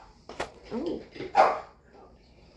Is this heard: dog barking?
yes